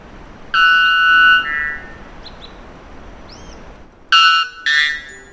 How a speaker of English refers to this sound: This unpleasant noise, or rather song, of the bellbird is the loudest ever documented bird call, when the volume isn't turned down for podcast purposes.